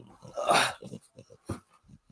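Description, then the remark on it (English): A small female dog growls and grunts like a little pig in a series of short bursts, with one louder rumbling growl near the start and a sharper grunt midway, no speech. “Look at that, my little dog. I mean, I don't mind the noise.”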